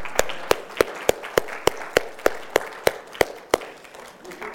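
Audience applause honoring a woman's 65 years of patience: about a dozen sharp, evenly spaced claps in a steady rhythm stand out over a low, continuous murmur of background noise, fairly loud throughout.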